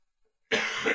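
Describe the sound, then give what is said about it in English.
A single harsh cough bursts out after a moment of silence, loud and raspy with a brief throaty follow-through before cutting off. “Yeah, and I can mute my mic if I need to, if I'm coughing.”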